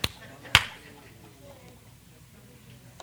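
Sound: hand slapping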